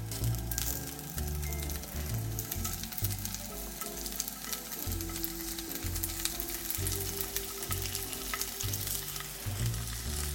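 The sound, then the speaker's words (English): About four to five slices of tempeh sizzle steadily in hot oil in a pan, a dense crackling hiss that stays loud for the whole stretch, with no voices over it. “I'm going to add our tempeh directly to the pan. Do you hear that sizzle?”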